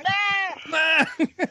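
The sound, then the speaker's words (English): A human voice imitates a distressed goat bleat, loud: a drawn-out, wavering cry followed by two short, sharp yelps, mimicking a goat whose testicles are caught in another goat's horns. “Well, one goat's got his balls caught in the other goat's hornage. And he's like, ah! Ah!”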